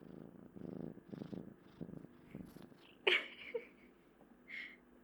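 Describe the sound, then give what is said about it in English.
A male kitten with massive paws purring in steady rhythmic pulses, then the purr fades under a couple of brief, sharper sounds near the end. No one speaks. “He's that's purring Emmett. Up a storm.”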